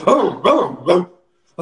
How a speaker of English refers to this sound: And you guys hear a very rough and deep barking from the center room. All of you at this point.